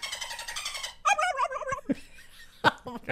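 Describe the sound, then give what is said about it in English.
A voice imitates a dolphin with a loud, high, buzzy chatter that breaks into warbling squeaks and a few sharp clicks and chirps, with no spoken words. “You do the dolphin. Okay. Do the dolphin.”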